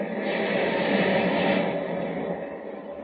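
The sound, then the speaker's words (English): A thunderous ocean wave crashes down on the battered deck of the ship Clara M. on a stormy, turbulent sea, a loud, steady roar of rushing, hissing water that holds for about three seconds before easing slightly, with no voices. “As a thunderous wave crashes down on the battered decks of the Clara M., Superman, returning from Metropolis, flies low over the turbulent sea.”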